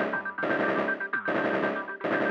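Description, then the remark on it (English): A comical heartbeat sound effect, the 'jackhammer' design of programmed Ringo brand heartbeats: rapid, loud mechanical rattling pounding in three bursts with brief pauses between, over a steady high-pitched whine, with no talking. “You can choose from among dozens of designs, like the machine gun, the jackhammer”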